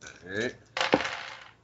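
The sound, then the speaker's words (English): Three dice clatter across a hard tabletop in a short burst for a combat roll in a game, with one sharp knock as they land and a quick rattle settling out. A brief voice sound comes just before. “do you want to give me another combat roll? And I'll say you get... So this is going to be a combat move this time, and I'm still going to say you get three dice, though.”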